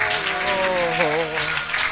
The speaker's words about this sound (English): Let's be thankful. How about it? Come on, let's clap our hands to him.